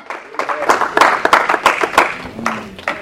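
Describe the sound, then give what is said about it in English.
A church audience claps loudly and steadily as a hand clap of praise to God for about three seconds, a dense patter of many hands, with voices calling out over the applause. “Now go ahead and give God a hand clap of praise.”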